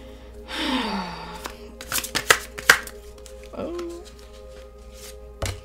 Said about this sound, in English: Okay, then let me shuffle this one too.